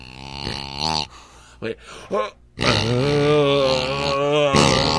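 Count Boogie's squeaky pig toy played back slowed down, its squeaks stretched into deep, droning groans: one long moan, a few short grunting bursts, then a sustained, wavering tone.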